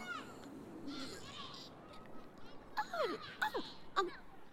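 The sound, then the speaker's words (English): Several sharp, descending seagull cries ring out over a steady wash of water, with faint voices of children playing. “I think I can hear water. Mm-hmm. And, seagulls, they're not speaking in crow, that mm-hmm. seagull. And children.”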